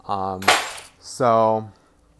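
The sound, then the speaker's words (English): Keys drop with a sudden bright metallic clatter, a brief jangling burst set between two steady, humming tones. The clatter is fairly loud, over within a fraction of a second. “Some keys just dropped.”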